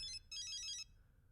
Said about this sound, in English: I believe you are listening to that phone.